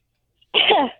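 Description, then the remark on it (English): A single fairly loud cough bursts out after a moment of silence, rough and breathy, trailing off quickly with no talking around it. “Cough once if you've done it more than once, and cough twice if you have not.”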